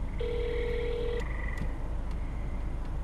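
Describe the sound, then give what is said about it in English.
A single steady electronic ringback tone on a phone line, lasting about a second, followed by a fainter lingering tone over low hiss and rumble, with a few faint clicks. “I might hang up. Two more rings.”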